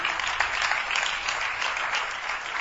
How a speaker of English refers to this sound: Keep clapping for them. Don't be tired. Keep clapping for them. That's the best thing we can do.